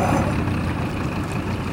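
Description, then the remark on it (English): A boat's engine rumbles steadily, a low, constant drone with a noisy wash over it, holding an even loudness throughout without any voices, as the boat turns around on the water to head back to shore. “Let's turn this boat around and get back to shore.”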